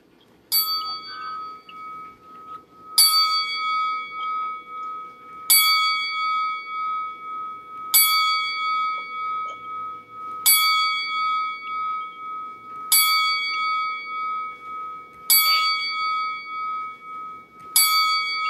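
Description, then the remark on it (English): A single bell tolls slowly and steadily ten times, struck roughly every two and a half seconds, each clear metallic ring lingering and fading into the next, with no voices present; a ten-bell salute for the late wrestler Superstar Billy Graham, former WWF champion and Hall of Famer. “Right now, I would like you guys to join me in a moment of silence as we toll the bell 10 times for the legendary superstar Billy Graham.”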